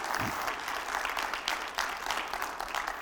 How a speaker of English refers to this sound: Can you give the Lord a good hand clap of praise?